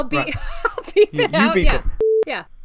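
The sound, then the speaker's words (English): Fast, animated talking broken by short, steady mid-pitched beeps, a quick one midway and a longer sustained one near the end, a voice standing in for censor bleeps over the name of a friend. “You do the beeps.”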